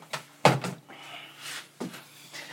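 A door is opened to let someone in who was scratching at it: a sharp clunk of the latch, a brief scraping swing, then a second softer knock, with no voices.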